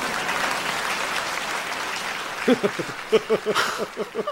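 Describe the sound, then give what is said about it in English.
A concert audience applauds in a steady, dense wash of clapping. Partway through, a few voices rise above the applause in short bursts. “Well, come on, clap, damn it.”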